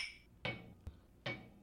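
Glasses clink together in a toast, two sharp ringing knocks about a second apart with a small tap between them, fairly loud, with no voices.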